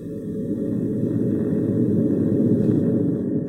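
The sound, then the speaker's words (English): A police cruiser's engine rumbles low and steady while its tires crunch over gravel in a dense, grainy texture as it drives toward a house, the noise swelling slightly louder as it continues, with no voices. “Listening intently, she could hear an engine and the gravel beneath its tires as a car drove distinctly toward the house.”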